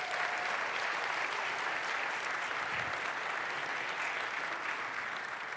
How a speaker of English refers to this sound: They spent all day. They've been working on it for months, putting this together. We all give them a big round of applause.